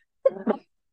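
A single person sneezes once, a quick two-part burst lasting under half a second, with a voiced intake followed by a sharper release, then silence. No one talks around it.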